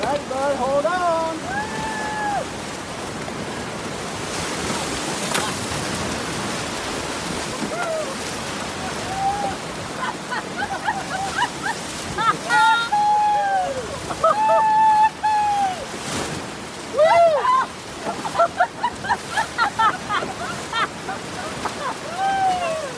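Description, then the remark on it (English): Loud, continuous rushing of river rapids fills the whole recording, a dense roar of churning water, with voices calling out intermittently above the noise. “And right there where it drops or there's debris in the water, those are the rapids.”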